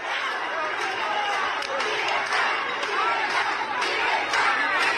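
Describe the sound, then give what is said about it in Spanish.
A street protest crowd in Cuba shouting for freedom, a dense steady roar of many raised voices with occasional sharp clanking bangs of beaten pots cutting through over five seconds. “El pueblo cubano despertó conciencia y salieron a las calles a gritar libertad, como estamos escuchando ahí.”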